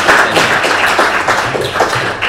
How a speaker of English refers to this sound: Can we give him a massive round of applause, please?